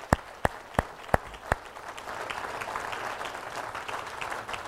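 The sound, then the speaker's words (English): Five loud, evenly spaced claps open the moment, then an audience joins in with a steady, sustained round of applause recognizing the middle school and high school youth leaders standing up, carrying on to the end. “if you are one of our leaders in middle school or high school, that you've been a part of these kids' life, if you could stand up right now, if anyone's here, stand up right now so we can recognize you. Yeah, round of applause.”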